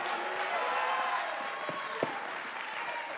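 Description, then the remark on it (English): A crowd applauds steadily for the Lord during a sermon, dense overlapping hand claps forming a continuous wash of sound, with a few sharper individual claps standing out. “Give the Lord a great big hand clap.”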